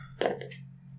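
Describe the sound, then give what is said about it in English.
Dice being rolled, a short burst of hard clattering clicks followed by two lighter taps as they settle, over a steady low hum, with no one talking. “Oh, we're not supposed to roll dice”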